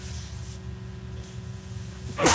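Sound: sneeze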